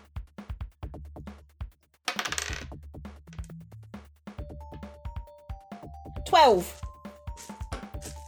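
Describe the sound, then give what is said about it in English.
Dice, including an eight-sided d8, clatter and roll across a tabletop as 2d8 is rolled: a quick series of sharp clicks and taps with two louder rattling bursts, over a faint low background hum. “Oh, that's 2d8. Hang on, where's my d8?”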